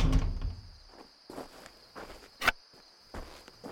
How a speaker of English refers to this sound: What are you doing with that shovel? Putting it through these nails so the barn doors don't flap everywhere.